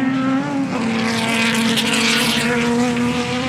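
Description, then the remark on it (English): A loud, sustained roar of Aston Martin race car engines, including a DBR9 and DB9, in a field with Ferrari 550 LMs, a Corvette Z06, Dodge Vipers, a Saleen and a Lister; a steady droning note with a slight rise and fall as the cars go by, with no voices. “A few Astons.”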